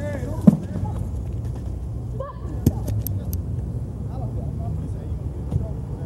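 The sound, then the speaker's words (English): Several sharp, loud bangs as Britney Spears strikes a car with an object at a gas station, spaced irregularly over a few seconds, with agitated voices and commotion of surrounding paparazzi underneath. “And so that was Bald Brittany hitting the car with a...”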